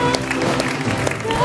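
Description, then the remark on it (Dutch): An audience claps steadily for God in a dense, continuous wash of applause, with sustained musical tones and voices blending underneath. “Kom, laten we God een groot applaus geven.”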